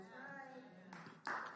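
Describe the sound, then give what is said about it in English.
A preacher's voice fades out during a sermon, then clapping from the audience breaks in as two short, loud bursts, the second one stronger and sustained until the end. “Thank you for that clap.”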